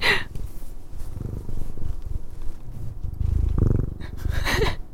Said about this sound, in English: It's moonlight purring.